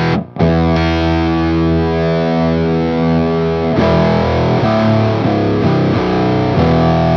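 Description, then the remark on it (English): A heavily fuzzed electric guitar chord played through an Octavia pedal rings out with a thick, buzzy octave-up tone, sustaining for a few seconds before a series of choppier, rhythmic strums. No talking. “This pedal I got when I was like 16 or 17.”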